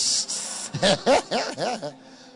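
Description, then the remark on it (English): A voice imitates a man hissing and breathing hard: a sharp, breathy hiss, then a quick run of four or five short, voiced huffing sounds, like hard, exaggerated breathing. “When you see a man hissing and breathing hard as though he has peppermint and tom-tom in his mouth, something is wrong.”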